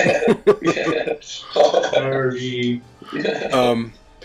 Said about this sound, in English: clearing his throat on camera, on mic.